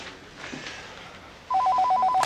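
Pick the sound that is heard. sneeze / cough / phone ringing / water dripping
phone ringing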